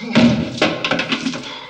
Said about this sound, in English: He remembers lying to the old man, and back in his cell, a tooth falls out of his mouth before he collects his waste bucket and bangs it against the door to get the guard's attention.